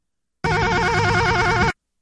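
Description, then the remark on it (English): A high, warbling trill resembling a ringing hotel phone, produced by a person laughing in imitation of the ring, loud, holding steadily for just over a second before cutting off. “Hotel phone laugh?”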